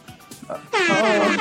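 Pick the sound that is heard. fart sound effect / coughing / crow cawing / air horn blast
air horn blast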